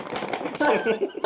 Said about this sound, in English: Stop jiggling your goddamn paper. I wanted... You know how much I picked that up? It sounds authentic, like we're sitting in a room where work happens.